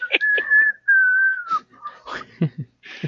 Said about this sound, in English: All he did was write the whistling part.